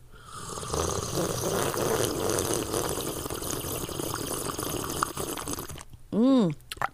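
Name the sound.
tea being poured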